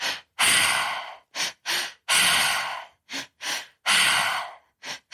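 A repeating breathing exercise, loud: two quick, sharp inhales drawing into the belly and up into the chest, followed by one long, forceful exhale through the mouth, cycling steadily with no talking.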